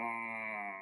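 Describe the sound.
A person on a call imitates a cat's meow with a single sustained, nasal, whiny cry, fairly loud, holding steady for under a second.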